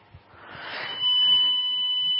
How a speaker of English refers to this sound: That's a loud mobile phone.